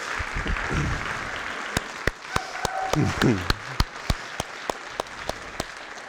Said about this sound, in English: So can we all just, in gratitude to God and thankfulness for our brothers and sisters, just give a huge round of applause for their labor of love.